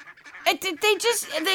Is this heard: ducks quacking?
yes